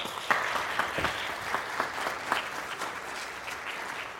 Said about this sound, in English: And I would like to give a round of applause for both speakers for their excellent overview.